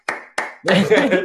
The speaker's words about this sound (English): Yeah, let's give you well done. Well done. Round of applause.